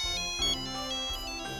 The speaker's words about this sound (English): Zap is just about to head downstairs when a future message notification comes in.